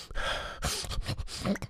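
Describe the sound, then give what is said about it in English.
A deep, noisy inhale drawn in through the nose and mouth, breathy, lasting nearly two seconds with a few ragged surges, demonstrating breathing in steam with the face over a pot of boiling water. No one speaks. “Just breathing it in like that.”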